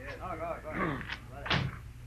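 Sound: door opening and shutting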